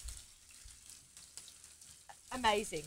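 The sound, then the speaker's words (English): Meat sizzles steadily in a small frying pan with one to two tablespoons of oil, a soft continuous crackle and hiss, with a voice briefly starting to speak near the end. “You hear the sizzle?”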